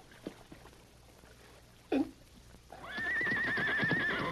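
A pinto horse hidden in bushes, just roped from over 40 feet away, lets out a loud, long, wavering whinny, following a brief sharp thump and a quiet stretch of low rustling. No one speaks.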